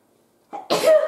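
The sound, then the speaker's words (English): A single loud sneeze: a short sharp intake builds up, then a forceful breathy burst that hangs for a moment, after near silence. “Oh, I'm going to sneeze.”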